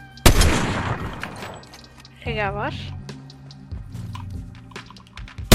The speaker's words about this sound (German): Digga, ich habe immer das Gefühl, den nächsten Schuss treffe ich, aber ich treffe den nicht.